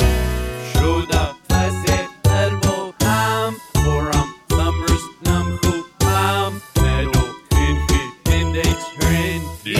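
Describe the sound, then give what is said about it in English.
A dinner bell rings in a loud, steady rhythm of bright chiming bursts, each followed by a brief pause, over a deep pulsing low tone, with no one talking. “Dinner bell, dinner bell ring.”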